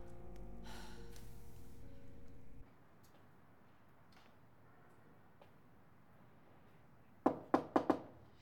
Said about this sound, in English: How'd you know it was me? You have a very distinctive knock. Well, thank you for noticing. Been working on that for years.